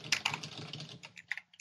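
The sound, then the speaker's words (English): Rapid keystrokes on a computer keyboard typing into a new file on several lines at once, a quick burst of crisp clicks that thins into a few scattered taps near the end. “Now start typing.”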